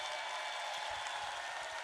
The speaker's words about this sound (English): A round of applause for the poem. And a round of applause for all the poets in the second round.